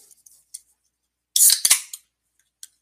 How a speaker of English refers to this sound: And we do have plenty to talk about as I get myself a drink here out of my little fridge. A little bit of a Pepsi, if you will.